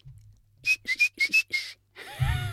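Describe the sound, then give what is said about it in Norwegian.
A person whistles a quick signal for a dog, five short, breathy chirps in a rapid rhythmic pattern, fairly loud, followed by a burst of rustling noise. “Den har et eget plystringssignal.”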